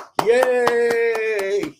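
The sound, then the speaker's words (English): Roughly seven sharp hand claps at a steady, quick rhythm ring out over a single long, sustained cheering voice holding one note, both loud and lasting under two seconds. “When I woke up and I actually saw this story, I was clapping.”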